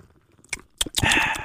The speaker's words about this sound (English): But then I'm going to sip this bubbly, though, too. Oh, we got to let them hear it.